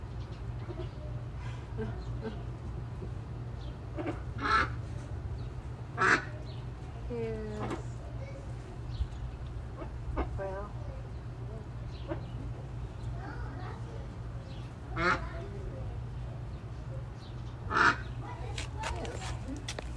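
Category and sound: bird, duck quacking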